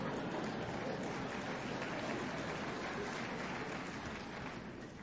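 Steady applause from an audience, a dense crackle of many hands clapping at once that holds for about five seconds and tapers slightly at the end, with no voices over it.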